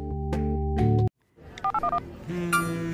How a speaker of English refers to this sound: This is one ringtone told over the course of several rings. And the story it's telling you is to answer your phone.